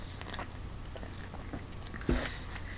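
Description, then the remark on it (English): Someone takes a sip of a drink, with soft wet mouth sounds followed by a single louder gulp near the end, over a low steady hum, no talking. “Hang on, I got to take a sip here.”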